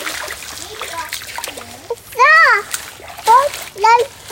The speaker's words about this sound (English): This is me creek stomping with my niece and nephew at Keosauqua State Park over this summer, which is about a 20-minute drive from the little Iowa town